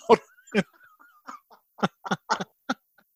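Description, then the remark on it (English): A dog barks in a quick, irregular series of sharp yaps, around eight or nine short bursts, moderately loud, with a faint whine between them and no talking. “I was going to say, how are the dogs through all the pandemic?”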